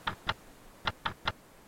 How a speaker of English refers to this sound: What's that clicking noise from in there? Oh, it's his wire recorder. He left it running. Hey, these machines cost a lot of money. Doesn't he care if it gets ruined?